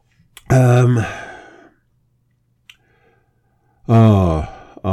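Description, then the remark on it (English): Two long, drawn-out yawns from people, each a loud voiced stretch fading into a breathy exhale, separated by a few seconds of near silence and a faint click. “Oh my God, why are we yawning so much?”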